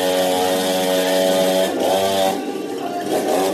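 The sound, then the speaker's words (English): A chainsaw held by a person dressed as a clown, used to wake a drunk man slumped passed out in his chair, runs loudly, its buzzing engine revving and dipping in pitch over a few seconds with no pause, no voices audible. “But a clown with a chainsaw comes up to wake him up.”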